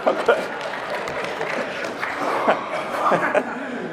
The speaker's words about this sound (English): I don't know what that means that you clapped for that, but that's fine.